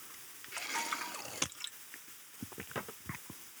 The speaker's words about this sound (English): Okay, water break, just for a moment.